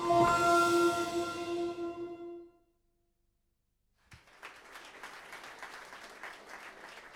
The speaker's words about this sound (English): So, please welcome, with the warmest round of applause possible, three very important people. Please welcome Angus McLean, Lindsay Collins, and Andrew Stanton.